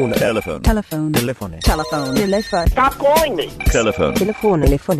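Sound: telephone bell ringing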